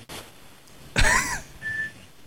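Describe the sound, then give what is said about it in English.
A short, steady electronic beep at a mid-high pitch sounds once, just after a brief throat-clearing noise, over otherwise quiet background hiss with no speech. “oh, am I beeping?”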